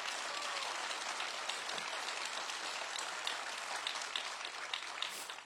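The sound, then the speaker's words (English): A church audience claps together during a sermon in a dense, continuous wash of applause, many hands striking at once with a steady, crackling texture that holds an even loudness throughout. “Yes, give him a hand clap.”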